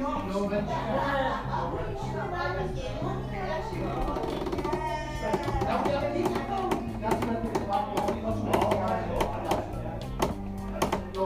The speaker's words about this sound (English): I'm sat on a very rocky bench, which makes a creaky noise. Hang on a minute. I'll do it better than that. Listen.